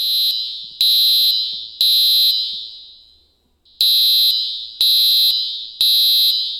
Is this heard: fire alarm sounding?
yes